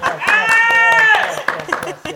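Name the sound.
hand clapping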